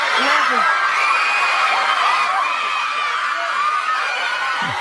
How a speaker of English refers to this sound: At the count of three, put your ear to the tree. Okay. Ready? One, two, three. Is it on there? Yes. I heard it. Do you hear it? Oh, my God. Did you hear the screaming? Yes. It's screaming.